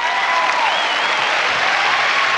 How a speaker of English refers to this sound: Please welcome to the stage, ladies and gentlemen, with a warm San Francisco round of applause, Mr. Will Durst.